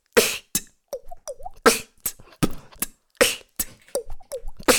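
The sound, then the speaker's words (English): A voice imitates dripping water droplets with a quick, uneven series of wet mouth pops and rising little plips, about a dozen in all, fairly loud with no talking. “Water droplet.”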